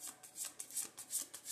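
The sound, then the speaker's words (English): A deck of cards being shuffled before a card numbered 12 is pulled, a quick run of soft crisp riffles in steady bursts, quiet and dry with no voices. “It's the shuffle for me, but today's the 12th, so we're going to pull out the card that has the number 12 on it, okay?”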